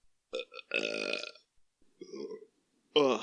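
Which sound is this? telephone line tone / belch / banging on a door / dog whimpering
belch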